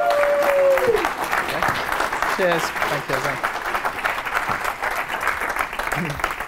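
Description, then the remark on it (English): An audience applauds steadily throughout, a dense loud wash of clapping, welcoming the host at the start of the show Mark My Words, while a man's voice briefly speaks over it. “Please give a warm welcome for Mr. ….”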